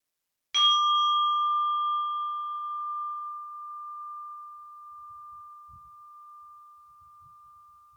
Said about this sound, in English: We'll ring the bell to end this practice.